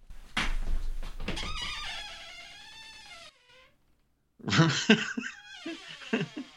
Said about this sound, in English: listening to a podcast and you hear this creaky door open or close or in the middle of especially during a paranormal podcast.